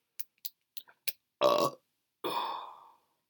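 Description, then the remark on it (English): A few quick clicks, then two loud burps: a short one followed by a longer, drawn-out belch that trails off. No talking. “Burp was brought to you by coffee that Tony brewed.”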